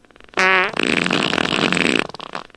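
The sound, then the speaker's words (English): Two loud farts in quick succession: a short, squeaky tonal blast, then a longer raspy, sputtering one that trails off. No one speaks. “You've farted twice more.”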